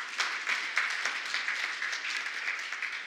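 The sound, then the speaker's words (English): An audience applauds steadily, a dense wash of many hands clapping with small individual claps popping out, sustained at an even level for the whole stretch with no voices. “Would you clap for them one more time?”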